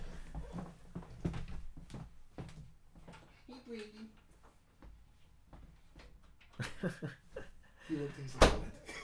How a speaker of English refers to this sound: Oh my God, it's a ghost. I'm going to shut the door.